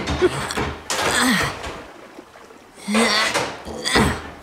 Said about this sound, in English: The gap between your door and the ground is pretty thin. I think I can wedge a baking sheet in there to block the water from coming in. Close the door, and let me give it a go.